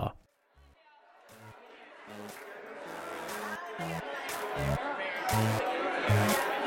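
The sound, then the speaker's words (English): A dense crowd chatters, the indistinct babble of many voices swelling louder over several seconds, with a regular low thumping pulse underneath. “I'll be honest, the crowd's a bit intense.”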